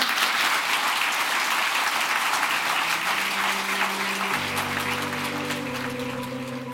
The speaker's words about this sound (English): An applause